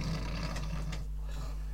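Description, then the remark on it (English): A huge, rumbling snore from a man who has collapsed, exhausted and breathing shallowly, deep and gravelly, drawn out over nearly two seconds with a rattling, growl-like buzz and no talking. “So this humongous like snore, and you can see that he's got this really sort of like shallow breathing.”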